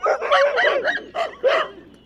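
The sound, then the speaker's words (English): A pack of sled dogs barks and yips excitedly, several overlapping voices in quick, uneven bursts, loud, with no talking. “sled dogs were one of the main methods of transportation in the Arctic regions of the world”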